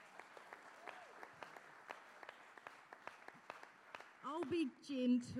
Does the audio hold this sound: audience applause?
yes